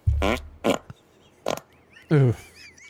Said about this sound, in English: Okay. Fart one. Get a little volume on that. Hit that one more time. Fart one.